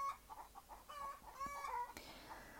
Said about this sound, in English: So, as an entertaining break, I don't know if you'll be able to hear this on the recording, but our chickens are actually having a very heated, animated discussion.